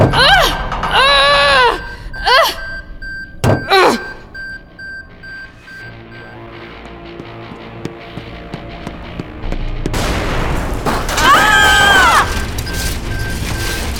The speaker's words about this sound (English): That sounded like... an explosion! More like a fireball.